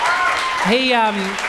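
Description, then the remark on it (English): A crowd claps steadily in a dense, continuous patter for a 19-year-old who has just emceed his first event, while a single voice lets out a rising whoop partway through before the clapping carries on. “Yeah, give him a clap. Yeah, give him another clap.”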